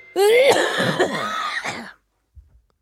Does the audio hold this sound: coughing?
yes